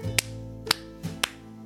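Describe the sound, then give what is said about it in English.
Three sharp hand claps ring out, spaced irregularly over a soft, steady musical background, each one crisp, clapped as part of a Fijian kava greeting. “And then now you clap three times.”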